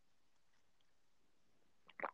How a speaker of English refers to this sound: Wait, can you hear me like slurping on my beverage? Do it Like, again. okay, listen.